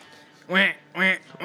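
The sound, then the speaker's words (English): A duck-quack phone ringtone goes off, three loud, nasal quacks repeating at an even pace, clear with nothing else around them. “No, he had his duck ring, too.”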